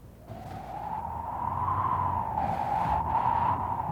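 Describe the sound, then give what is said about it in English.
A dog whistle, the kind used to call a Saint Bernard, gives a steady, high whistle for about four seconds, rising slightly and wavering like wind whistling, with a low rumble underneath and a couple of airy bursts. “It sounded like the wind whistling.”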